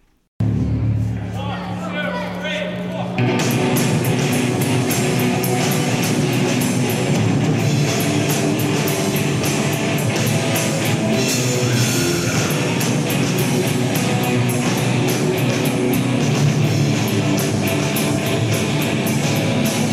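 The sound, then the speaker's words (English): A three-piece teen rock band plays live and loud, drums pounding steadily with distorted guitar, kicking in after a few seconds of murky crowd noise and continuing at full volume throughout. “Here's a three piece band from 14 years ago.”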